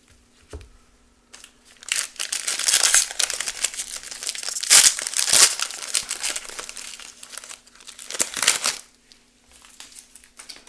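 Crinkling, crackling plastic foil wrapper of a 2023 Donruss trading card pack being torn open and crumpled in bursts over about ten seconds, with loud rustling peaks and brief pauses, and no talking.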